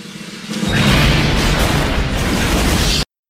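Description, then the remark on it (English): A quick snare drum roll builds for half a second, then a loud explosion erupts and roars steadily for over two seconds before cutting off abruptly. No voices. “And yes, that was a snare drum roll rolling up to that explosion.”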